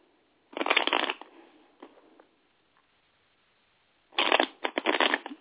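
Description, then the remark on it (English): A deck of tarot cards is shuffled for a daily card reading in two bursts of crisp, rapid riffling, separated by a quieter pause with a few soft card taps, clear with no talking. “All right, so I'm going to go ahead and I'm going to shuffle the cards.”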